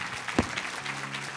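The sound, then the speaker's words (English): An audience claps steadily for two women, a dense patter of many hands with one sharper clap standing out early. No voices are heard. “We have some applause for these two ladies.”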